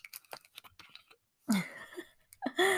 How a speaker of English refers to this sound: This episode, it's going to be a little juicy. So let me just sip my water.